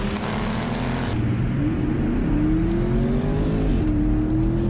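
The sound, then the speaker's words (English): Loud V8 engines roar at full throttle as a Mustang Dark Horse accelerates in a drag race, the pitch climbing steadily with a brief dip at a gear shift before rising again. Continuous and droning, with no voices. “The Dark Horse is out by a car, and on the shift, it just did nothing.”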